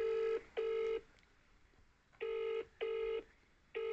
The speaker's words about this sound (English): Yeah, so we're gonna call the first victim. And he is on the phone. Right. We're just ringing now.